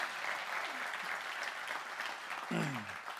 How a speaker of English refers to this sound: And you can clap for them. That's okay. Yeah.